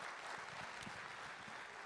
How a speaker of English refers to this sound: Let's give God a big hand clap of praise.